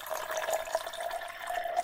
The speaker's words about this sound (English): You know, let me go ahead and I'm going to open this up and pour just a little bit.